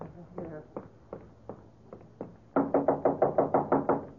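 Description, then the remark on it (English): Someone knocks on a door, a few spaced raps at first, then a sudden louder burst of about nine quick, insistent knocks. “Open the door.”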